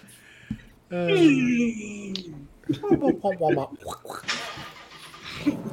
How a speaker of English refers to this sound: Uh-oh, I hear my car. You actually have somebody in the garage. Something throttling? It's kind of low.